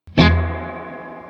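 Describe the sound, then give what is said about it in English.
A single clean electric guitar chord is strummed once through an amp with a delay pedal, loud, then rings out with a long, smooth, echoing tail that slowly fades. No voices. “So here is our basic clean tone.”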